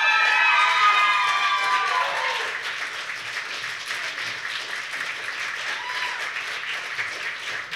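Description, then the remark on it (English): A crowd applauds with loud whoops and cheers at first, the high shouts fading after a couple of seconds into steady, dense clapping that carries on to the end. “Keep it going for Cat King.”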